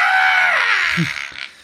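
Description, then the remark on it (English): A person lets out a loud, strained scream imitating a screaming penguin, a single harsh cry that fades over about a second, with a short low grunt near the end. “Wouldn't it be great if penguins just screamed instead of the little quack they made?”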